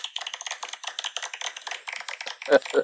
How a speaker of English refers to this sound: It's a partial credit one. Yeah, it's the golf clap sound effect.